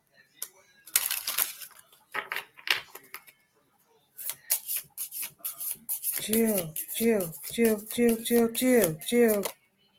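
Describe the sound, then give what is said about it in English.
Crisp, papery riffling of a deck of cards being shuffled again in several quick bursts, followed by a person talking as the shuffling sounds fade. “Let me shuffle these ones again.”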